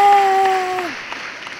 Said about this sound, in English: And the crowd rejoices.